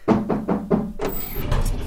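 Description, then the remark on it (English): Four evenly spaced heavy thumps give way to a sustained grinding rush as the door to the secret Clutchon dungeon opens, fairly loud, with no voices present. “Just behind this door is where Ran said the secret Clutchon dungeon is.”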